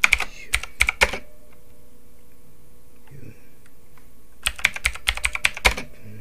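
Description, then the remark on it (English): Crisp computer keyboard typing in two bursts of rapid clicks, separated by a few seconds of near silence with a faint low murmur in the middle. “Let's see, what could I, let me play something while I'm typing this so you're not just sitting here bored.”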